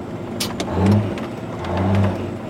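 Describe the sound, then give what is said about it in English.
A truck owned by TJ Plenty Chief's Red Road trucking business revs up twice, each surge climbing in pitch and then easing off, a loud mechanical roar with a low rumble idling between the pushes. “TJ Plenty Chief owns this truck and two others with his Red Road trucking business.”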